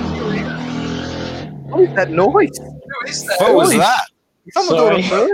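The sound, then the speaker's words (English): A motorbike engine drones past for about a second and a half, loud and steady, then fades as people start talking over the quieter background. “It's a motorbike.”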